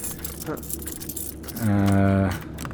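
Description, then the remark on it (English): Metallic jingling of keys on a key ring being tried on a basement door in a house, light clinks and rattles scattered across a couple of seconds, with a short sustained vocal sound rising over the middle. “None of these keys work on this door.”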